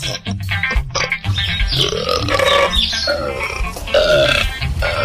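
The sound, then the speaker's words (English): A cow lets out a long, loud, rumbling burp that drags on for several seconds, deep and guttural with a wavering, croaking tone, with no talking. “Those are actual cow burps, guys.”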